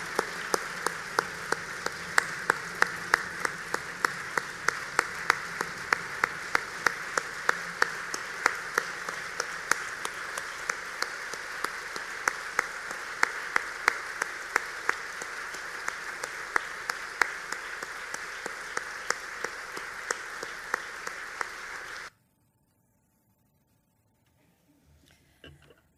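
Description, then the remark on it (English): A crowd applauds steadily for about twenty seconds, dense clapping at a fairly loud level, then it cuts off abruptly into near silence. “Put the round of applause going for Stuart Kelly”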